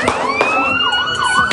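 An ambulance siren wails loudly as the ambulance rolls in, its rising and falling tones overlapping, while sharp, sudden gunshots fired into a crowd ring out at irregular moments.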